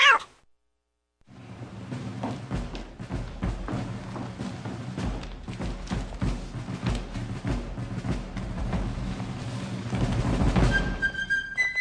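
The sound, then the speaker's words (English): A crowd of cats meowing and yowling at once, a dense, continuous chorus of overlapping cries and caterwauls that swells louder toward the end, with occasional soft thumps underneath. “Hey, where'd all these cats come from?”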